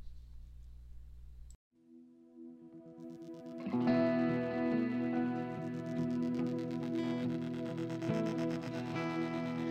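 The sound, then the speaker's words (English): The instrumental intro of an original song by a duo: after a brief low hum and a short pause, sustained effects-laden tones fade in, then swell into a fuller, louder band sound around four seconds in. No voices. “And we'll leave you tonight with an original song”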